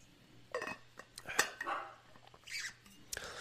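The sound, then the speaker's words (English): A pet dog barks several times in short, sharp bursts at an irregular pace, sounding somewhat muffled, with no one talking. “My dog is barking.”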